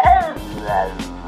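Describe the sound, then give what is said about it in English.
A dog gives an affectionate yelp, a moderately loud run of whiny, drawn-out syllables that rise and fall in pitch, almost like speech, with no one else talking. “That's a dog. That is correct.”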